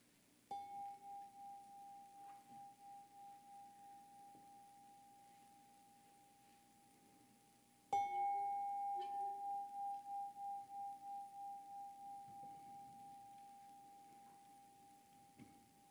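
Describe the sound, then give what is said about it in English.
A meditation bell chimes twice, about eight seconds apart; each strike rings out in a clear, sustained mid-pitched tone that pulses gently as it slowly fades, with no talking. “Each chiming of the bell taking you a little bit more deeply.”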